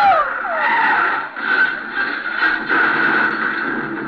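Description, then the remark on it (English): Car tires screech in a long, continuous high-pitched skid lasting several seconds as a car is driven erratically, loud, with a wavering squeal and no voices. “what's the matter with him, the way he's driving? Well, he's going to crash.”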